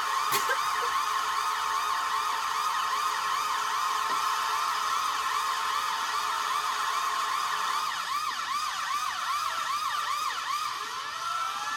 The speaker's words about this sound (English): The horn plus siren is overstimulating, unpleasant, and way too buzzy.